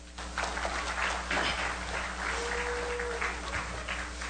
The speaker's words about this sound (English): That was weak. Someone clap for God so I can get a drink.